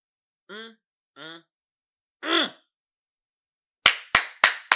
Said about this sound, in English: Come on, give her a hand clap, people. Come on. Give her a hand clap out there.